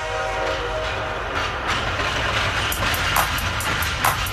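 Loud train sounds open a hip-hop dance track: a brief horn tone over a steady rumble, then rhythmic clacking bursts that fall into a beat-like pattern. No one speaks.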